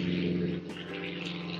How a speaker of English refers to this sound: Definitely an old-fashioned plane, like a museum-era plane going overhead.